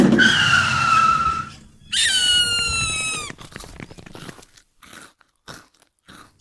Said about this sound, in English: It's 1 point per right answer, or 2 points for the first person to call out, "That's my sandwich," when I beep our van's horn, which today sounds like this.